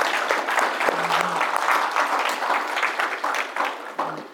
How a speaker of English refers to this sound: So just give them a round of applause, please.